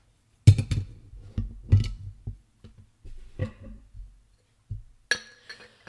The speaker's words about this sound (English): I'm pouring this one from a 12-ounce bottle into a Spigolo lager glass, which pairs elegantly with this beer.